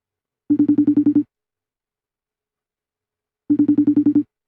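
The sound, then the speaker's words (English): A phone call to someone's cousin rings twice, unanswered, each ring a quick buzzing trill lasting under a second, separated by a couple of seconds of silence. Clear, with nobody picking up or speaking. “call your cousin, see if he's gonna answer it now.”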